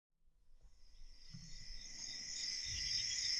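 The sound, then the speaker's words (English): Crickets chirp in a dense, steady chorus that swells in over the first second and holds, a bright shimmering trill layered with faint low rumbles underneath. “Hear those crickets? Those noisy little insects exist inside my head in the nighttime savannas of my mind.”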